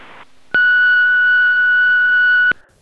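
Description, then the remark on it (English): A single steady electronic voicemail answering machine beep, sounding after a message asking the caller to leave a message, holds at one pitch for about two seconds, loud and clear with sharp on and off edges, no voices present. “Hello, your call cannot be taken at the moment, so please leave your message after the tone.”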